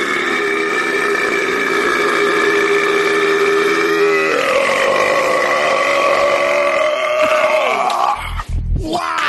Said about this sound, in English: Am I intimately familiar with the work of a man named Badlands Chugs who guzzles gallons of soda and then burps for a real long time and racks up millions of views and is rich because my kids discovered him online?